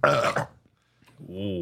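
A loud, wet, gurgling burp erupts, then after a brief pause a lower, drawn-out guttural vocal sound follows.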